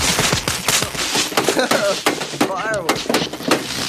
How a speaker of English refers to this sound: Fireworks.